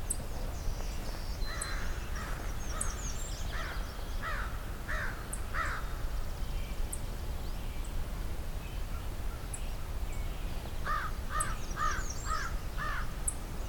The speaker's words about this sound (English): Got some crows going overhead.